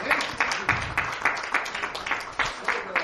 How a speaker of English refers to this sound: If you're glad to be here, give God a clap off. Thank you, Jesus.